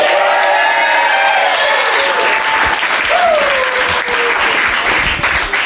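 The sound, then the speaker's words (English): An audience at Comedy Fight Club applauds loudly and steadily for several seconds, voting for a fighter with their clapping: a dense wash of clapping with cheers and a few rising whistles cutting through. “each and every single one of you is Comedy Fight Club, because your applause will count for one vote in each of these fights”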